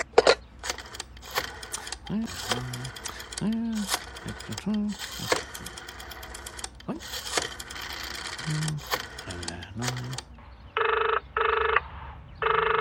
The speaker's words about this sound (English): And that is what we find out is powering this night terrace of Horatio's. It's not the plumbing, it's the phone.